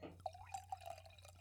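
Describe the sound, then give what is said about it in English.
A quiet sip of a mimosa from a glass: a few soft, wet liquid blips and small gulping drips in quick succession over a faint steady hum, with no talking. “Wait, no, I'm going to have a sip of my mimosa.”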